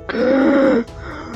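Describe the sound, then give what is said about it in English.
A single hoarse, strained breath voiced as a rasping groan, lasting under a second, fairly loud, with a faint breathy catch afterward; a person performing the labored breathing of the character Hornet, who is reaching out, in a roleplay game. “at this point, Hornet's kind of like reaching out towards you and like very hoarsely breathing.”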